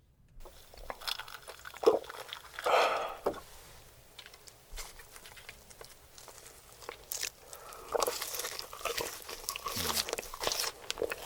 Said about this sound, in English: Okay, we will go to Exhibit B, which is the man... eating his nuggies. Eating the chicken nuggets.